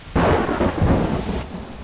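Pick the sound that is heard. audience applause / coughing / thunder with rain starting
thunder with rain starting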